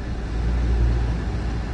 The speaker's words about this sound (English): Sorry, there was a dude in a yellow vest on a fucking moped, not knowing what the fuck he was doing. And he kind of fucked me up right there on that intro.